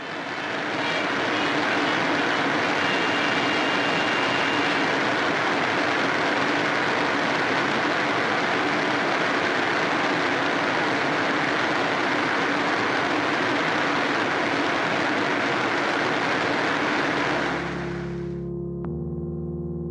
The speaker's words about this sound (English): But perhaps the producers of this film were enamored with that roar of the falls, too. Because for exactly 13 seconds, they let that sound stand alone.